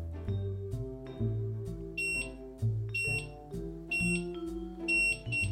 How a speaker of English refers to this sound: Hello, and welcome back to my very loud timer.